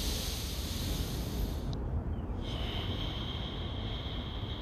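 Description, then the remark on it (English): A long, deep grounding breath drawn and released in one steady, breathy rush of air, fairly loud and unbroken, with no talking, taken by someone standing somewhere in Queens. “You see, like, that breath right there is just a grounding breath.”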